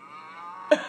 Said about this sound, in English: There's no context, right? It's just a cow.